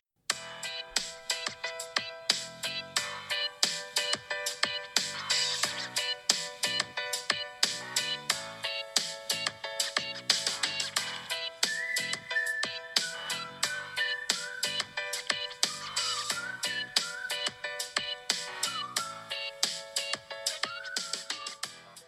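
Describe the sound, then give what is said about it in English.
A phone's electronic melodic tone chimes over and over in a steady repeating pattern, bright and fairly loud, continuing without a break and with no voices. “Who didn't turn their phone down?”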